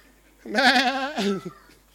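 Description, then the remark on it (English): A person imitates a lost sheep's bleat: one drawn-out, quavering "baa" of about a second, fairly loud, with a brief wavering tail at the end. “The 99 have gone, and he looks up and he goes, "Bah, where's everyone?"”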